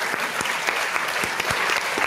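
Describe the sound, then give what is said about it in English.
A crowd applauds steadily, a dense wash of clapping with sharp individual claps popping out irregularly, sustained at even loudness throughout with no voices. “Don't hold the applause.”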